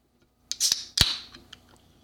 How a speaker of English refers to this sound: And so, just a sec, I'm going to get a sip off of my Dr. Pepper here. That way I won't have to keep clearing my throat all through this podcast.